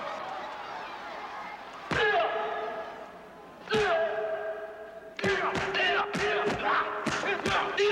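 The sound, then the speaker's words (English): Heavy, sharp impacts from a film fight scene land over a sustained tonal backdrop: two isolated blows a couple of seconds apart, then a rapid flurry of punchy hits near the end, including a kick that really knocks a man out. “This is the kick. He is really knocked out in that sequence.”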